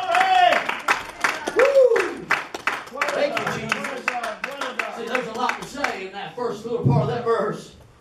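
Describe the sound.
A church audience at a morning service claps hands in praise, a dense, irregular burst of applause lasting several seconds, with voices calling out and cheering over it.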